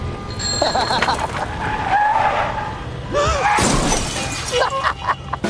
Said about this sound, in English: So he's so distracting in traffic that people start crashing into each other.